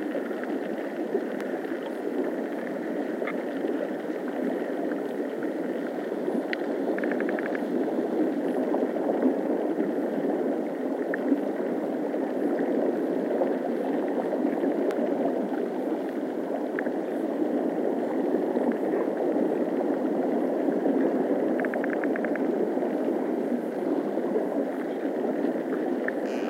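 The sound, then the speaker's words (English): Steady rushing and gurgling of river water flowing over islets of weed, lush green beneath the surface, a dense continuous wash with no pauses, occasional faint high ticks on top. “Water flows over islets of weed, lush green beneath the surface.”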